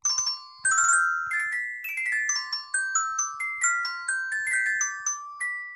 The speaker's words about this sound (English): Little known fact, we actually didn't talk about Kiersey Clemons at all, but that's actually the ringtone that Barry gets when she calls. Okay. Thanks for that. Yeah, I composed that specifically. But that, of course, is the impromptu for games.